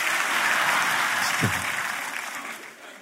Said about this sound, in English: Give yourself a hand for bringing your butt to church. And if you're watching online, you don't get to clap.